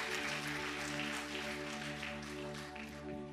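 A crowd claps steadily in praise of Jesus in the morning, a dense, continuous wash of many hands over a sustained, droning musical chord, holding at an even, fairly loud level throughout.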